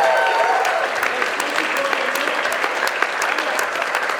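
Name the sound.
audience applause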